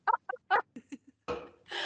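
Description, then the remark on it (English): A few short, squeaky voiced catches build up before a loud, breathy burst of a sneeze, with a second hissing release right after. “Bless you.”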